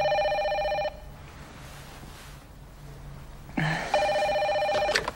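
An electronic phone ring sounds twice, a steady trilling burst of about a second, a pause with low room hum, then a second ring with a brief clatter before it. Clear.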